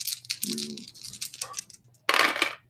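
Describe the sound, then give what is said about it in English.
A handful of dice clattering and tumbling across a table, rolled for a heavy blaster shot in a game, a dense rattle of small clicks that trails off, then a sharp louder burst of rattling near the end, with no talking. “A lot of dice.”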